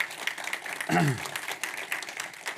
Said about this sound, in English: You can clap. You should clap.